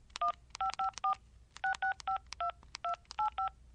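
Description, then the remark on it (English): A rapid series of cell phone keypad tones as a number is dialed to make a call, each a short dual-pitched beep, about eleven presses in quick uneven rhythm, clear with a faint background hiss and no talking. “Wait, I have to call Annie. Where's the cell phone?”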